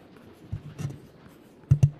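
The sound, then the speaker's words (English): Soft pats and rustles of damp rainbow-colored paper pieces being stuck one by one onto a papier-mâché bowl, a couple of gentle touches followed by two firmer dabs in quick succession, with no talking. “As I stick one and one more piece of paper onto my paper mache bowl.”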